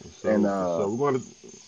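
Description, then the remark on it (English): A thin, steady high-pitched cricket trill runs faintly outdoors the whole time, while a voice draws out a long vocal sound in the foreground. “Damn, nigga, you around some crickets, ain't you?”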